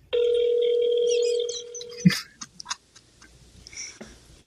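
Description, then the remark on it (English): A phone ringback tone plays once through a speakerphone held up to a microphone as a call is placed, a steady electronic hum lasting about a second and a half, then fades into scattered clicks and handling noises. “Hey, put the phone up to the microphone so that way we can hear what they're saying.”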